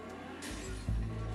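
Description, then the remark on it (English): A truck engine rumbles, a deep steady idle that swells louder partway through as it revs up, with a broad hiss of noise over it and no talking. “So, my partner found a truck.”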